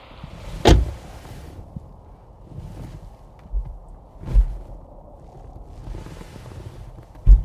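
A sharp clunk of a car door near the start, followed by softer thuds and rustling, then another solid door slam at the end, outdoors on a miserable day, with no talking.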